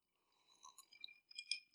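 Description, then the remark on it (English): Glasses of Johnnie Walker Blue Label Scotch clink together in a toast, a couple of soft, bright chimes with a brief ringing tail, fairly quiet, with no voices over them. “Cheers, eh? This is, we're drinking the Blue Label Johnny Walker Scotch.”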